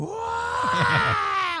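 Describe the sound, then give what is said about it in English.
An adult voice imitates a baby's angry scream while feeding, the baby eating briefly, then pulling off to scream: a sustained, strained wail held for over a second with a rough, groaning edge and a pitch that stays fairly steady before tapering off. “She'd eat for like 2 seconds, pull off, and just be like...”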